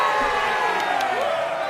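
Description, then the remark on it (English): A large crowd in a tavern cheers and shouts steadily in celebration, a dense wall of voices at a constant loud level, with a few sharp bursts that could be claps or whistles. “And the crowd cheers.”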